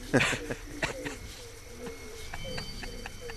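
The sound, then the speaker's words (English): A voice imitates a raspy, heavy smoker's laugh that breaks into a few harsh coughs, a loud first burst followed by several shorter rhythmic bursts. “He does a very heavy smoker's laugh. That turns into a cough.”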